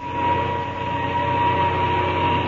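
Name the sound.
airplane engine starting up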